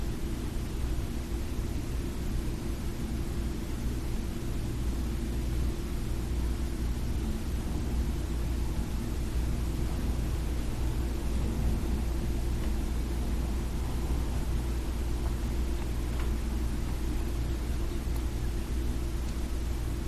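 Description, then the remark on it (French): A steady, unbroken city hum with a deep rumble of traffic, holding at a constant level for the whole stretch, with no voices and no sharp individual sounds standing out. “Les sons de la ville.”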